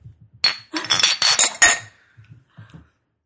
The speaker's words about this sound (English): When you clink, it was just depressing.